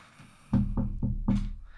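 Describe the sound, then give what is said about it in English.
Four sharp knocks rap on a wooden door in a quick, slightly uneven rhythm, fairly loud. “Suddenly, there's a knock on the door.”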